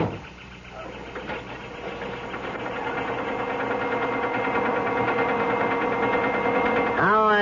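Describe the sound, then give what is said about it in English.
A car engine hums steadily and grows gradually louder as it pulls away, ending with a quick rising whine as it revs up. “I got a call from the chalet to hold the car for you.”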